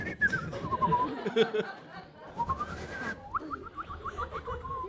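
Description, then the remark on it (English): A thin, squeaky whistle mimics a stifled fart, sliding downward in a few wavering glides before breaking into a quick run of short chirps, with laughter and chuckling mixed underneath. “Ah, sparrow's fart is when you stifle a fart and it gives a little whistle.”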